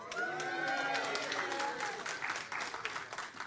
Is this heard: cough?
no